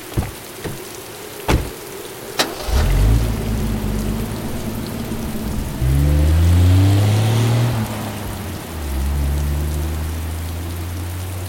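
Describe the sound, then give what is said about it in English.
Heavy hurricane rain hisses steadily throughout during Hurricane Katrina in New Orleans; after a couple of sharp knocks, a car engine rumbles, its low drone rising and easing as the vehicle drives through the downpour on rain-obscured roads. “Roads were obscured by the pouring rain or maybe the tears streaming down my face.”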